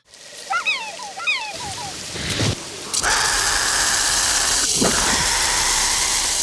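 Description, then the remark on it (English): The spitter dinosaur's call, built from hissy rattlesnake sounds and many swan recordings: several squeaky, rising chirps, then a sharp gasp and a loud, steady rattling hiss that fills the remaining seconds. “So it has kind of the hissy rattlesnake, gaspy attack sound, but it's got cute sound, which is actually a swan, a lot of swan recordings.”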